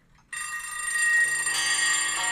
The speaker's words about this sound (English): This is what my parents' apartment would sound like my entire childhood when someone would call.